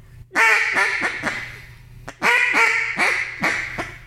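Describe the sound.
A duck call imitates a hen's quacking as a fine hen call, in two short runs of raspy, nasal quacks, each series tapering off quickly. Loud, with no talking.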